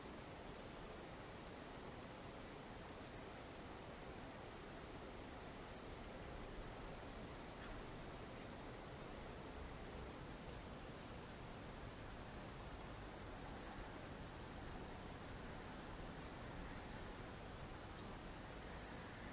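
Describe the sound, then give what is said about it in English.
A steady, unbroken hiss of running water, like a stream or waterfall, fills the whole stretch at low volume with no voices and no pauses or changes in intensity. “Just letting the sound of whatever that running water is just be itself.”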